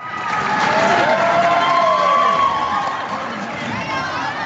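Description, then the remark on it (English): A studio applause sound effect: a studio audience bursts into loud, sustained applause mixed with cheering and whoops, a dense wall of clapping that holds steady and then eases slightly toward the end. “Sorry, it was just studio applause.”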